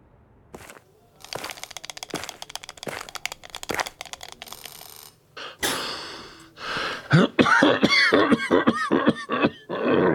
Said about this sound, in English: You okay? You're not sounding so good. It's a diet. Coughing is a side effect.